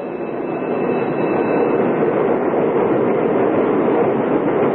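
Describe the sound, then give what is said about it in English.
Big, shiny electric commuter train cars rumble along the platform and skitter to a stop, with a steady, loud roar of wheels and motors, a thin high whine riding on top, and no voices. “They exchange idle small talk till the big, shiny electric cars skitter to a stop along the platform and they scatter aboard and scramble for seats.”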